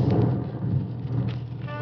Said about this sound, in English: Beginning to rain.